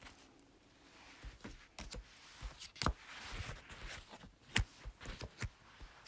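Tarot cards being shuffled: a run of crisp, irregular snaps, taps and papery rustles, with a few sharper slaps standing out. No one speaks.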